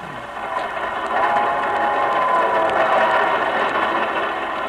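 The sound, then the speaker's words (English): A passenger train travelling from New York through New Mexico, carrying Jack Benny and his gang, runs along the rails with a steady, continuous rumbling clatter, fairly loud, holding an even level for several seconds with no voices. “A few years ago, Jack and the whole gang were en route here by train from New York.”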